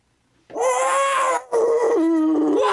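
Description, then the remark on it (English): A person imitates a dog's howl with their own mouth: two loud, drawn-out wavering howls, the second sliding down in pitch, with a brief breath between them. “I'd ask you to demonstrate this sound somehow with the dog”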